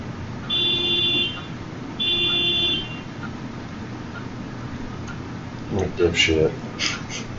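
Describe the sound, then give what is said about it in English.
A car horn honks twice in long, steady blasts, each about a second, with a rough buzzing tone over low background rumble; a voice briefly speaks afterward. “Somebody honking their fucking horn while we're trying to do this.”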